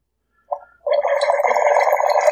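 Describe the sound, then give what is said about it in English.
A wine aerator gurgles loudly as wine is poured through it, a brief splash followed by a steady, bubbling rush that continues for a couple of seconds with no talking. “Listen to that aerator work.”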